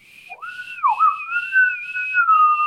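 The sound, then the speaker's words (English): A single sustained whistle, rising at the start, dipping briefly, then holding a steady, fairly loud tone for a couple of seconds with no talking. “It's been a slice, and if you need us, just whistle.”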